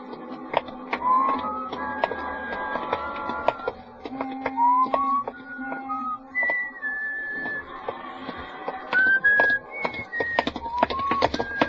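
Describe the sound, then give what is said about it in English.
A man whistles a wandering, lilting tune with sliding notes, clear, while sharp footstep-like taps and clicks sound steadily underneath as he walks along a street late at night. “It was on my day off and sort of late at night, and I was just walking along the street, not going anywhere in particular or even thinking anything much, just sort of whistling to myself and walking along the street.”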